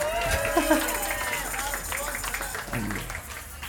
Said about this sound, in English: Can we get a little bit of applause for his accent?